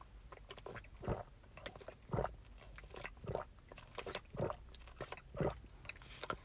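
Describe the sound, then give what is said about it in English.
Someone drinking Glacio Smart Water in steady gulps, about six swallows spaced roughly a second apart, each a soft wet gulping sound, with no talking. “That thirst break was brought to you by Glacio Smart Water.”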